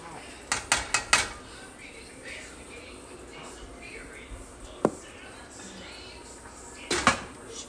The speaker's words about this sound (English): And then close that door back.